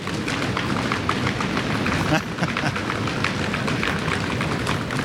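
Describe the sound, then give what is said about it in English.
Many people, including children, stomp hard on a floor, a dense, continuous rumble of overlapping thuds lasting several seconds, loud, with crowd noise mixed in. “Can you stomp on the floor real hard so they can hear us?”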